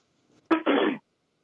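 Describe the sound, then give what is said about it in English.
A person clears their throat in two quick, rough bursts, a sharp harsh onset followed by a longer raspy rumble, then silence. “Wow, I had to clear my throat for that one”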